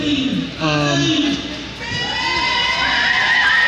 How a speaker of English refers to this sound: If you're hearing a lot of cheering and whatnot, then you know I'm in the right place. You know that there's a lot of good energy here, there's a lot of fun, a lot of different characters.